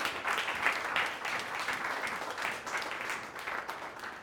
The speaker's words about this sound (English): Come on, you can give God a clap.